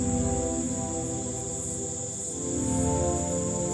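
Dense jungle night ambience at about 8 p.m.: a steady, continuous wall of high chirping insects and crickets, with layered buzzing tones underneath that swell slightly toward the end. No voices.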